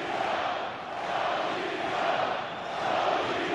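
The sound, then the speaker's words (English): A dense, sustained roar from a large arena crowd during a hockey game between the Lightning and Toronto, under five minutes left in the third period, loud and continuous, swelling and dipping slightly in waves with no distinct voices standing out. “Listen to this building.”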